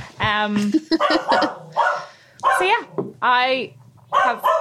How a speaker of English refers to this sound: Oh, Doug's off on a bark.